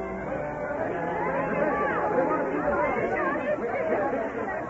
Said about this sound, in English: The crowd became restless. They had been here for hours and all for nothing, and angry voices echoed against the hills.